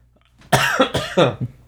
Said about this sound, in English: I'm sorry for coughing, everybody. I didn't expect this much.